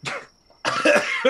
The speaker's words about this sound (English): Coughs up a little blood. Coughs up a tooth. And part of his tooth.